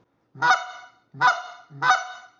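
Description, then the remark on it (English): Three loud, sharp solid clucks blown on a goose call, evenly spaced about a second apart, each a short nasal honk rising then cut off, with no talking around them. It is the plain cluck a caller uses when geese are coming in at about 80 yards. “Keep giving them that cluck and that cluck.”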